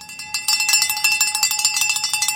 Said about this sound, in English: I guess we should ring the bell. I'll ring the bell. I don't want to do it too many times, but not for me anyway.